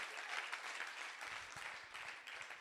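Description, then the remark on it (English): A crowd breaks into steady applause, many hands clapping in a dense, even wash of sound that holds at a fairly loud level throughout, with no voices rising above it. “Hey, listen, if one claps, we all clap.”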